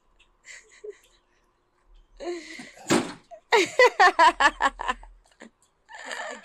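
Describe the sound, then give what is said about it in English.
A door is pushed shut with one solid thud, followed right after by a quick run of rhythmic, laughter-like vocal bursts. “Come on, you want me to show you how I had to shut my door?”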